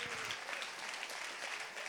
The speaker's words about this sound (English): Can you clap? Come on, clap for the Lord.